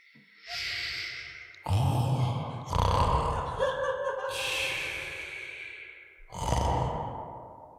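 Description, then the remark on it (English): A voice imitates a sleeping yeti's snore with exaggerated, rumbling sounds, about four long drawn-out breaths in a slow rhythm, each a raspy inhale or snort, loud and without any speech. “so it is the Yeti's turn, so he's asleep. Yeah, how does he snore”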